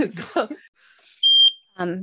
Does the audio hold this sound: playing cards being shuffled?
no